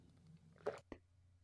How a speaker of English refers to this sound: You took a sip, didn't you? Well, I was going to mute myself for the sip, but then I didn't mute myself for the sip before what I said after. I heard that sip. I heard it.